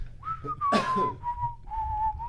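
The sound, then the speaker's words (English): A man walking over the top of a hill whistles a wandering, tuneless line on a steady mid pitch, with a brief breathy burst partway through, over a low rumbling background. “a man from the opposite direction you were traveling walks over the top of the hill, and he's kind of just whistling a tuneless whistle, just.”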